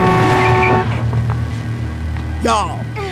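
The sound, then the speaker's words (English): A loud, sustained car horn blares for just under a second over a steady engine rumble as the car nearly hits a woman pushed into the street; traffic noise continues as a voice cries out briefly near the end. “He pushes her into the street and a car almost hits her.”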